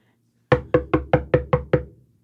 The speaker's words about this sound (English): An unexpected knock on the door interrupted one of my father's extremely long stories